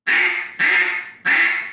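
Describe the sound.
Three loud, raspy duck quacks blown on a reed duck call with the reed left to rattle, evenly spaced, each a harsh buzzy blast with a rattling edge; no talking.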